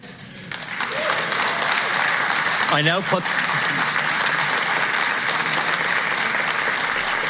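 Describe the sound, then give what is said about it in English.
Sustained applause fills the Dáil chamber after the Dáil Clerk announces Deputy Catherine Connolly as the successful candidate selected by secret ballot, rising quickly after a quiet start and holding steady and loud throughout, with a brief raised voice or cheer breaking through near the middle. “I'm sure you applauded Catherine Connolly like anybody else would”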